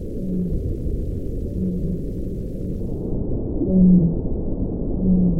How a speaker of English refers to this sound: We recorded several different baleen whale calls.